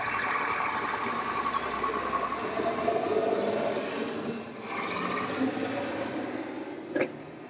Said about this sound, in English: That thing's a crane. That thing's a crane truck on rails, and I got a picture of it, too.